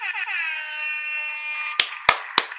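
A loud, buzzy air horn blares in one sustained, harmonically rich blast, then three sharp percussive hits land in quick, even succession. No one speaks.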